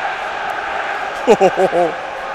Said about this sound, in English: Listen to that racket of the fans. It's Tozer time. As a Tozer goes up, listen to that.